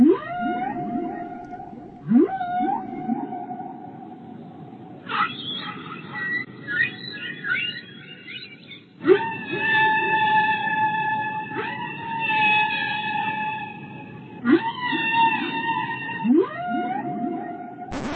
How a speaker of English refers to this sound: So instead, we are going to be playing you 20 minutes of whale song.